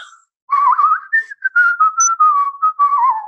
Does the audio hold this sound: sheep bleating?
no